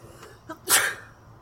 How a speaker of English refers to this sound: bless you. Bless you.